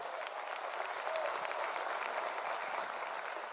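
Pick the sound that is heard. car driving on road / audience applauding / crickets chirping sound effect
audience applauding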